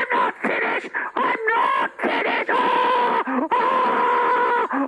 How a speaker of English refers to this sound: Stop screaming, Your Majesty! Stop it!